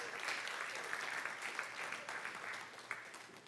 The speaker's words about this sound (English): And so thank you so much for these men. Y'all give a round of applause.